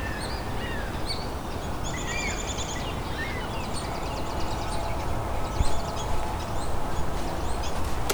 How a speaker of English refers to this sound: I guess the first fish crow I've recorded, too.